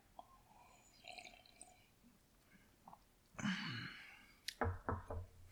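Someone drinks from a glass: a soft slurping sip followed by a couple of gulps and a light knock as the glass is set down, with no talking.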